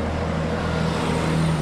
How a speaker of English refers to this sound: Pedal to the metal, this agrarian duo drives off through the New York traffic, hoping to inspire future urban farmers.